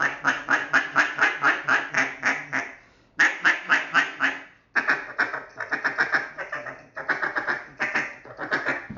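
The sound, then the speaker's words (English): A duck call blows loud, rapid runs of hen-like quacks, three close sequences separated by brief pauses, the later ones choppier and more clipped, like a barking hen. No one speaks. “vice versa, if that's not working, try the guy with the double read doing the boss hen and giving a little barking hen”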